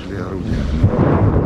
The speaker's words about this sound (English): Incoming. It's a mortar, explains the doctor. Yes. Sometimes it rustles and then bang.